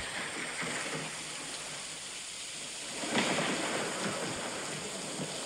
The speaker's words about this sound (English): What about thunderstorm?